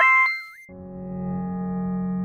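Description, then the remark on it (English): A brief electronic phone tone as a call is placed, bending up and down in pitch for under a second, then giving way to a steady, low, buzzing line hum. “I'm so glad you actually answered your phone.”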